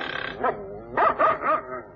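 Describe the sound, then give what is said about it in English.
Several dogs bark in a quick burst of sharp, overlapping yaps, fairly loud, with a couple of louder barks near the end. “Say, how many dogs has the old girl got?”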